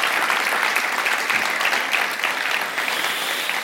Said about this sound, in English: It wouldn't have been possible without that crew that got up. I think they left at 6 o'clock to get down here so we could get out on time for that. So would you give them a round of applause?